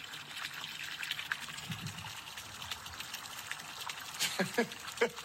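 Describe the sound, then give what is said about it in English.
Water pours steadily into a container as a farmer fills water on his property in the morning, a continuous hissing, splashing rush. Brief voice sounds break in near the end. “And now I'm filling the water.”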